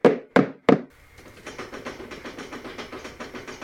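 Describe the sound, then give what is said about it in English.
Three loud, evenly spaced bangs pound on a window with metal-like grating on the outside, heard by patients in a unit, followed by a low, steady rumbling with a faint rhythmic clatter underneath. No one speaks. “She said that there were several times where the patients would hear loud bangs as if someone was pounding on the windows.”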